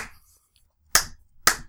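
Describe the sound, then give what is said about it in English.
Two sharp, loud hand claps land about half a second apart after a quiet pause, each a crisp bright smack made by two people trying to clap at the same time, with no talking. “I mean, I heard your clap as my hands connected, so it was good on my end.”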